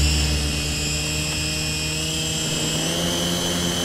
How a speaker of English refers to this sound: My new office vacuum will get it and steam the floor. I built this with spare parts from an old Conoco shop vac.